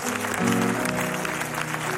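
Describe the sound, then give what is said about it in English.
An audience applauds steadily, a dense crackle of many hands clapping at even loudness throughout, with low sustained musical tones running underneath. “We can continue to applaud them as they come.”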